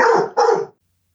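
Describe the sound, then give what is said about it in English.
A dog gives two quick, loud barks in close succession, followed by silence. No one speaks. “Warning: this episode contains strong political opinions and background dog noises.”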